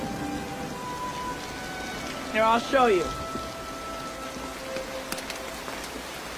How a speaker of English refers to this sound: It's just rain, it's okay. It's fine, come on out.